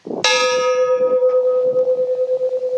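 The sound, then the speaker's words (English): A single loud clang as an empty gas canister hanging from a tree is struck like a gong in the morning to call everyone to get up and come to the morning meeting, its bright metallic tone ringing on steadily for a few seconds over faint background rumble. “That's an empty gas canister that's hanging from a tree.”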